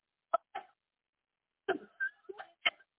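Two short, sharp coughs, a pause, then a rougher burst of several coughs and throaty hacks in quick succession, fairly loud, with no talking.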